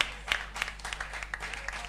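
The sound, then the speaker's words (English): A crowd claps steadily, a dense patter of many hands with sharper individual claps popping out, moderately loud and continuous throughout; those clapping are people who attended the Holy Ghost baptism service held the previous Wednesday. “You see, those who came, they are clapping.”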